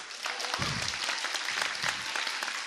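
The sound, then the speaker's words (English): An audience claps steadily for a few seconds, a dense, even wash of many hands with no single claps standing out and no voices over it. “And I'll let you clap.”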